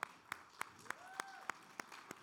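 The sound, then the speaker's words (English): A church audience claps together in a steady, even rhythm as the young people leave for kids' church, about eight sharp beats in quick succession, with a faint sliding tone in the background and no talking. “Come on, we clap until they go.”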